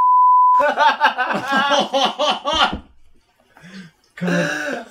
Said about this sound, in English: You might want to beep this.